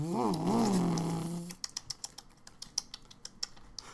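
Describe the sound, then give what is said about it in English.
A running engine ticks with rapid, irregular sharp clicks after a brief wavering tonal whine, the clicking steady with no voices. “It's making a weird clicking noise, but it seems to be running pretty good.”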